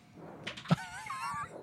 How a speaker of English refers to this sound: Just for everybody out there, he rolled into his dice tray. It bounced out and went right into the ashtray. Dice tray to ashtray. It was still in a tray.